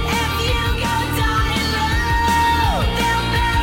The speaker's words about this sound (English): I like big yelling fucking choruses and pre-choruses. Awesome. Very 80s.